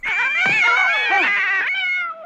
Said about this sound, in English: The cat goes like, as it's leaving, because they couldn't pick one cat sound, so they merged four of them.